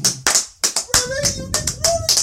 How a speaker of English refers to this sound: Golf clap.